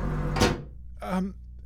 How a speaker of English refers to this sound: Oh, sorry. I should leave. I'll knock. I'm closing the door.